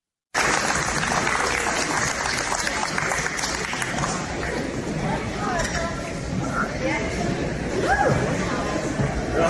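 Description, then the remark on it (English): A crowd of spectators claps steadily for an athlete at a podium ceremony of a women's competition, a dense wash of applause with the murmur of voices running through it and some scattered cheers rising near the end. “Why are people clapping for this?”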